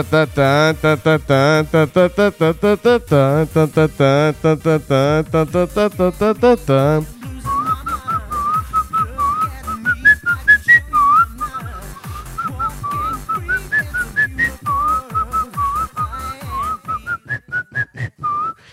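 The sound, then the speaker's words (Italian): Someone whistles the melody of a song whose title they cannot recall, a thin wavering tune rising and falling, over a steady rhythmic pulse that follows a buzzy, tone-rich opening passage. “la fischio fa...”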